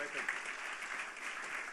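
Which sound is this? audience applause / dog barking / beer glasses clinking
audience applause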